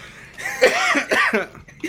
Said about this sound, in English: I can't stop coughing. I was eating that lollipop.